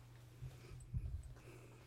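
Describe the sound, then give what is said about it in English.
A dog snorts and snuffles in a couple of short, low bursts, with faint shuffling movement over a steady background hum; no one speaks. “Sorry, dog problems again.”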